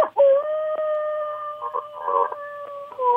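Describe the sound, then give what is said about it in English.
A dog howls in a long, steady, wavering tone lasting several seconds, with a few short bark-like yelps breaking in along the way; clear, with no talking. “If I hear a bark before a howl, I'm not too concerned.”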